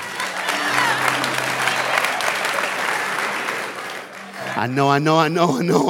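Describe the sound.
A crowd claps steadily and loudly for several seconds, with a few voices cheering in the mix, before the applause fades and a man starts talking over the tail end.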